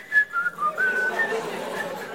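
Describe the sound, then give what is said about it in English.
A person whistles a short tune, a quick run of clear notes stepping up and down in pitch. The melody then fades into a softer, breathier tone. “As I told you last week, when he was making them, I'm sure he was whistling.”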